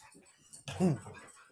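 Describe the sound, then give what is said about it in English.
A dog lets out a brief, excited whimpering whine, rising and falling over about half a second amid soft rustling and scuffling as the dogs sprint around. “My dogs are getting fired up right now with all this SEC talk.”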